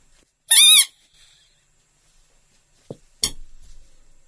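A rooster crows once in a short, loud, wavering call with a faint trailing tail, followed a few seconds later by a sharp knock and a brief rustling burst.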